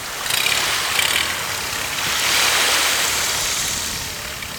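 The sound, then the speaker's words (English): The motor of a tiny boat carrying people in wetsuits drones steadily beneath loud, rushing water and splashing waves as the boat crashes through waves, a continuous wash of noise that swells midway through, with no voices. “Año Nuevo Island is one of their few nesting places in the United States, so we're all zipped tightly into wetsuits and crashing through waves in this tiny boat.”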